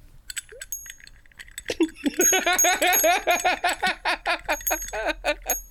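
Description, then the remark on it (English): A bell rings in short bright dings, first alone and then repeatedly over a burst of loud, rhythmic laughter and giggling from people. “Where's your bell? You should use your bell.”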